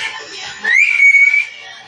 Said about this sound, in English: Why? Why is she whistling? I don't know. Someone whistled back.